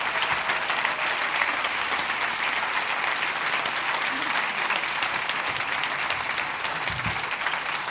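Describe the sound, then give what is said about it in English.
A sustained round of audience applause at a poetry event, dense and steady clapping that stays loud from start to finish with no break and no speech rising above it. “So we'll have, before you perform your poem, yeah, a huge round of applause and thanks to yourselves for being an amazing audience as well.”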